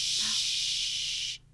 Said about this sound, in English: Suddenly, the radio became static.